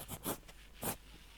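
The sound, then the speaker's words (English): Quiet rummaging through used pens in search of a pencil: a few short, scratchy clicks and rustles in quick bursts, with a louder scrape near the end and no voices. “Come on, why did she not throw her used pens away? Ah, pencil.”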